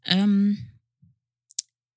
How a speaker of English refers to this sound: I don't know why I keep hitting the mic. I'm so sorry.